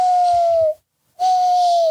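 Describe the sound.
Two long, steady hoots, each slightly falling in pitch with a breathy edge, separated by a brief silence. A voice imitates an owl call.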